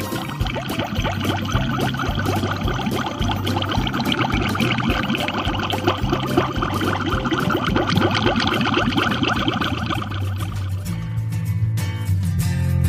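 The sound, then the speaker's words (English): Water bubbles and gurgles continuously and fairly loudly for the whole stretch, a dense churning texture over a steady low hum, with no voices. “And now, back to the oh-so-soothing sound of Bubbles. That's right. Hear the bubbles again.”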